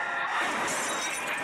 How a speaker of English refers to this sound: Yeah, actually, that crash lasted way too long. If the crash lasted that long, you'll probably survive it because it took a long time to come to a stop.